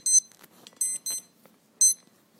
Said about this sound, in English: Sorry, guys. I got Sammy barking up a storm. I got alarms going off. I really apologize.